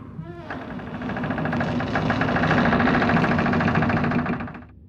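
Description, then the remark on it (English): A loud door swinging shut, heard as a steady, buzzing, grinding drone with a rough harmonic rasp that holds for about four seconds and then cuts off, with no talking over it. “Ah, fuck, the door swinging shut.”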